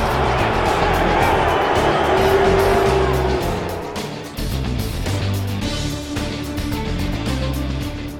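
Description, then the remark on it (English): A large arena crowd at the Grand Lakes Arena boos a fighter loudly and steadily for several seconds after a fight, a dense wall of voices that dips briefly midway before swelling again. “I know you're booing me, but he actually did rip my flesh open.”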